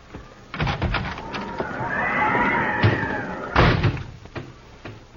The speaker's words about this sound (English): I don't know why that horse is so important.